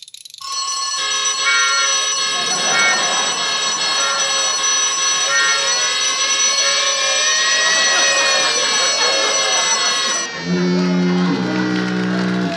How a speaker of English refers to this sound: Well, the alarm still works. Switch that off.